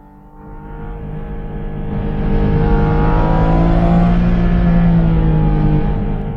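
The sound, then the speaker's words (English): A Porsche GT4 RS engine revs hard as the car is driven in Palm Springs, its rising, layered roar swelling and holding loud before easing off with a downshift near the end. No one speaks. “is the GT4 RS. And so this was in Palm Springs. We had a anonymous person who let me drive it. Now listen to what it sounds like.”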